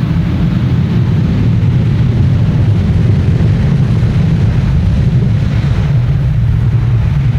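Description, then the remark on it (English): A loud, steady airplane engine drone, deep and rumbling, holding constant throughout with a broad wash of roaring noise and no voices. “What a great sound. Yeah, once you get back into a plane, doesn't it?”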